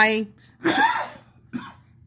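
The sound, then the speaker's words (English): A single loud, harsh cough bursts out, followed by a shorter, softer cough or throat-clearing a moment later, with a bit of voiced sound just before. “I agree with you 100%, right up until the cough.”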